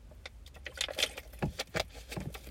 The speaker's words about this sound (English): Sorry, I was shaking this water in my hand.